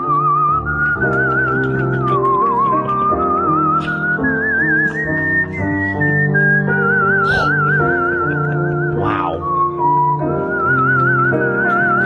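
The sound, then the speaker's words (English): A man whistles a breathy, high melody with wavering vibrato, gliding through slow, sustained notes over a steady instrumental backing, sounding much like a pan flute. “Sounds like …, master of the pan flute.”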